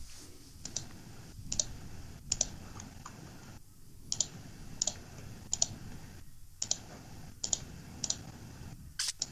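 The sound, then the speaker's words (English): Heavy-duty mouse clicking in the background, sharp clicks in irregular bursts, a couple of clicks at a time, fairly crisp over a low rumbling background hum, with no one speaking. “Heavy duty clicking going on in the background.”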